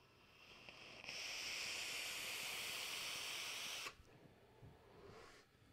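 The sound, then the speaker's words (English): A steady, airy hiss holds for about three seconds, then cuts off sharply: a long draw on a vape atomizer fitted with one fat 4 mm fused Clapton coil, vaping Pony on Acid liquid; quieter background noise follows with no talking. “Dang, vaping real nice.”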